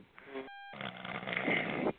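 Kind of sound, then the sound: human body sound, person snoring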